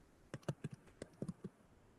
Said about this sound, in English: Are you typing? Sure. No. Dang it! You can't hear that. I hear it loud and clear. It did not sound like that.